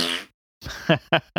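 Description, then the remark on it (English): Someone blows a wet, buzzy raspberry with the lips, a mouth-made fart noise, followed after a short pause by a few quick, sputtering voiced bursts, fairly loud. “big finger and fart noise for Namor”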